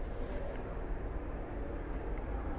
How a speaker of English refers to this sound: Whoa. What the hell is that? Oh, it's a helicopter. Okay. Jeez. Very loud helicopter. Jeez, man. What is all these loud noises today? It's too loud for my ears.